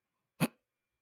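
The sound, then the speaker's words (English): A single sharp hiccup, a brief throaty burst, with quiet before and after it and no talking. “God damn it, I have the hiccups.”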